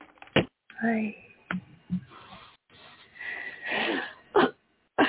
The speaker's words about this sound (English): Sorry. Oh, and I coughed again on the air. What I'm doing is I'm clearing my throat.